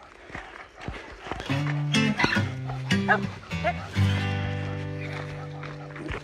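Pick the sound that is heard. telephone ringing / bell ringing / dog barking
dog barking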